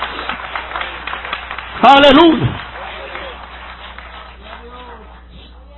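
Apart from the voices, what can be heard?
applause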